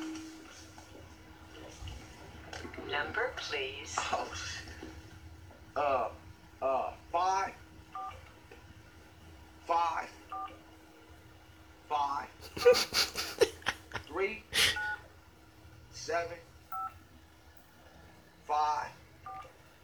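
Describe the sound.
A string of short telephone dialing tones beeps at an irregular pace, mixed in with bursts of people talking and some brief clattering noise in the middle.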